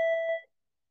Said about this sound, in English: There's that school bell right there for you.